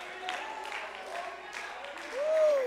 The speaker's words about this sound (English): That's, well, somebody ought to just clap your hands and give the Lord praise for that promise.